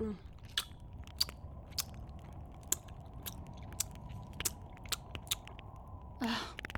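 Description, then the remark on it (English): Someone chews food with a steady series of sharp, crunchy bites and mouth clicks over a low, constant hum, ending in a brief louder rustle. “Sorry, Val. I was eating.”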